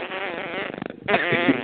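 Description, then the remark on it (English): A harsh, buzzing interference distortion fills the line, sputtering like a raspberry or fart noise, briefly cutting out before resuming loudly with no clear talk. “I don't know what's going on with the interference there.”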